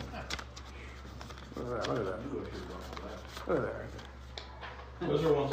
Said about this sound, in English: Anybody else need paper for notes? Some papers. You can pass those around.